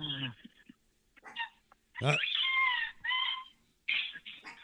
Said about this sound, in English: My dog is trying to play with me, too, because I have mac and cheese and I'm eating it. And he's a greedy bastard, so he's got, like, a squeaky toy